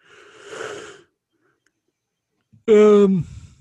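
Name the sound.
yawn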